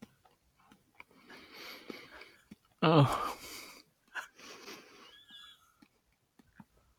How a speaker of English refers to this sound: Oh. I can hear you munching. How's it going?